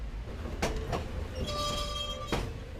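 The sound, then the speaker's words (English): A Sierra Railroad murder mystery dinner train rolls along tracks built in 1897 in the Sierras, with a steady low rumble, a few sharp clacks from the wheels, and a brief high metallic squeal in the middle. Fairly loud, with no talking. “She's the star character on the Sierra Railroad murder mystery dinner train. Aboard!”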